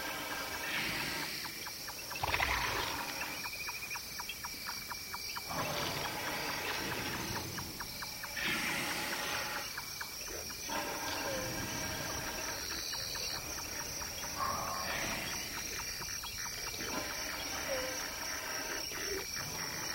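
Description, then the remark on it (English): Elephants snore while asleep in slow, rhythmic breaths every few seconds, deep and rasping, over a steady chorus of crickets and insects on a grassland in Kenya in the middle of the night, recorded by Chris Watson. No one speaks. “And when they sleep, some of them snore.”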